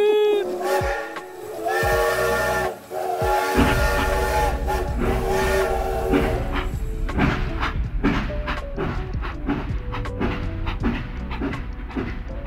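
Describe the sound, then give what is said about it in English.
A loud steam train whistle blows in a long harmonic blast, then gives way to the steady, rhythmic chugging and clatter of a train rolling along, with no voices. “This is the part of the podcast I'm going to edit in the train whistle sound.”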